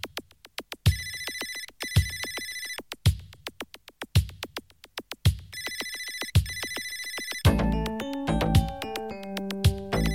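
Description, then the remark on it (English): A phone ringtone mimicking an old-fashioned bell ringer rings loudly in repeated rattling bursts, then switches to a brighter, more musical electronic pattern near the end. No one speaks. “When people with new phones have this noise as their ringtone. Like the old classic ringer.”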